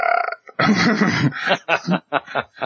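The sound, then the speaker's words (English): A man lets out a loud, raspy belch that rumbles for under a second, then a string of short snickering, chuckling bursts follows. “So he lets out a loud regurgitation thing. Sound. And, a belch, yes.”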